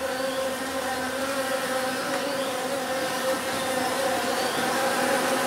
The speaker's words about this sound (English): Do you hear that? What's that sound? What? Not the bees! Not the bees!